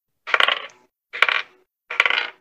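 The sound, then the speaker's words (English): Dice rattle across a hard tabletop in three separate short rolls during a tabletop role-playing game, each a quick burst of clicking and clattering that settles into silence before the next throw. “Where is that dice?”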